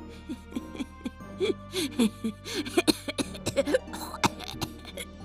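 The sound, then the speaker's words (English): A voice acts out a woman's wheezy laugh that breaks into a phlegmy coughing fit, with rapid, uneven bursts of hacking and throaty, voiced sputters, fairly loud, with no words. “She laughed herself into a phlegmy coughing fit.”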